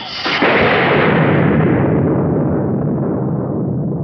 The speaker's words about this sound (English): We'll put lightning on.